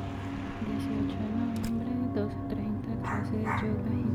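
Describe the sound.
Several dogs bark and yip in short bursts against a dense, constant background hum, with indistinct voices mixed in; the barks overlap one another.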